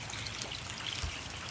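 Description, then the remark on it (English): A steady, even hiss of rain falling, soft and continuous with a faint watery trickle, no voices and no breaks for the whole moment. “Feel the sound of the rain caressing every level of your consciousness.”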